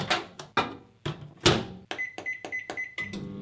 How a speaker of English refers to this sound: Oh. It's a microwave. That's right. Famous sound there.